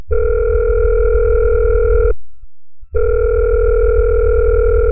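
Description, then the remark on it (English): A telephone line ringing as a call is placed to bring a guest on the line, heard as two long, steady electronic buzzing tones about two seconds each, separated by a brief silence, with no voices. “So let's see if we can get her on the line so we can talk to her more about it.”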